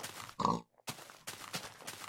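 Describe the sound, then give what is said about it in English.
A pig grunts and oinks in a few short, rough bursts, one louder squealy snort near the start followed by quicker grunts, with no talking. “all these pigs are dry! It is the drought!”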